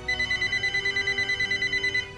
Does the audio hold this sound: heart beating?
no